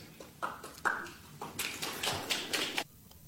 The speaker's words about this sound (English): They're snapping. That's like, snapping? There's two people clapping, but then if you watch the video, everybody else is doing the stupid snapping thing.